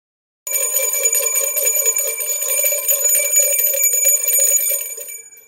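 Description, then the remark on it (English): A bell rings twice, loudly and steadily for about five seconds, a bright, sustained metallic ringing with no voices, cutting off abruptly at the end. “It's a Two Bell Tuesday.”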